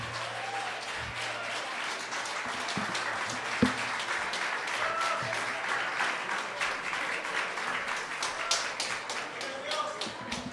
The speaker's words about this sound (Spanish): Denle otro fuerte aplauso al mariachi ….